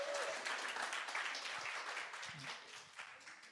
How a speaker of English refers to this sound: Come on, would you give him a round of applause?